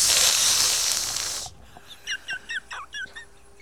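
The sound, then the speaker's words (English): A person imitates a snake with a loud, steady, breathy hiss lasting about a second and a half. It cuts off abruptly, followed by a quick series of short, high chirping sounds. “That was a good hissing noise.”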